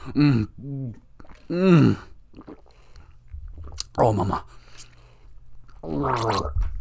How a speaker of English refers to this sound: Okay. I'll take a drink of water because we still got it.